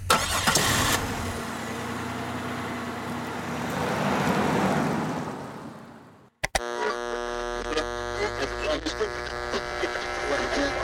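A truck engine turns over and rumbles steadily, swelling louder before fading away as the truck putters off down a dirt road, bouncing on its suspension, followed by an abrupt cut to a buzzy, droning tone.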